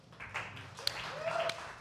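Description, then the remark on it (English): Faint, scattered clapping from only a few people in a comedy show audience, the comics present applauding, with a couple of sharper single claps standing out over a soft crowd murmur. “Round of applause if you are a comic in here right now.”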